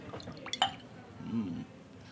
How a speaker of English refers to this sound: All right, I'm going to pour a little for myself and just pass the bottle this time.